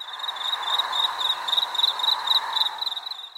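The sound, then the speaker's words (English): Crickets chirp in a steady, rapid pulsing trill, a bright high-pitched chorus that carries on without pause at a moderate level, with no voices present. “Did you say crickets?”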